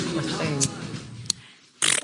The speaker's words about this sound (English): A 12-year-old girl sneezed 12,000 times a day for weeks. Whoa. Can't stop sneezing. She sneezes about, are you ready for this, 12,000 times per day.